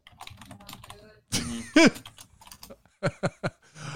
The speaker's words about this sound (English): I just heard typing. I heard typing. I heard angry complaint letters being formed.